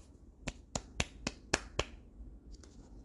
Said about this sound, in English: Okay, I'll give her a golf clap for that manifestation.